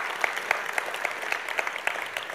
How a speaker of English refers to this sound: And why don't we give a round of applause anyway to all those who served in the legal field? Yeah.